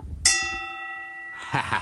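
A small hand bell is struck once, its bright tone ringing out and slowly fading before a voice begins speaking at the end.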